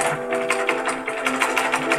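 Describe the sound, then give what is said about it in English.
A pedal-powered sewing machine runs steadily, its needle clattering in a quick, even rhythm of mechanical ticks, with a faint whirring hum underneath and no voices. “I then saved for a better sewing machine powered by pedals.”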